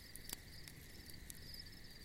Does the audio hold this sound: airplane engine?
no